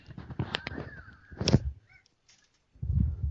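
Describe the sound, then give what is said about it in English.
Audio of the children's cartoon Peppa Pig plays faintly: a jumble of bright, squeaky tones and short whistling effects, a brief pause, then a low muffled rumble. “Sorry, if you heard Peppa Pig for a second, I had to walk into my room to get my charger.”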